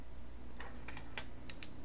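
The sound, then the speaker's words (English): Small dice rattle and clatter as they are rolled for a dexterity roll: a quick run of about six sharp, light clicks spread over a second, fairly quiet against a steady low hum, with no one speaking. “Warm these dice up.”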